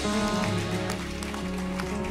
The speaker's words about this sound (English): Go ahead, keep clapping until they get up here.